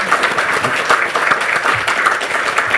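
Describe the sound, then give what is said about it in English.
Steady, dense applause from an audience welcoming writer Steve Sem-Sandberg, many hands clapping together in a continuous wash of sound that holds at an even, fairly loud level throughout. “Please give Steve a huge round of applause.”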